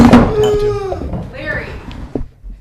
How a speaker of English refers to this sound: knocked over his microphone. It's a faux pas.